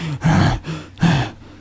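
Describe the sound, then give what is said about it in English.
A voice imitates heavy, raspy breathing: two long, drawn-out breaths with a throaty, voiced edge, each followed by a softer airy pull in between. “puts on green gloves, like the breather. And he starts breathing.”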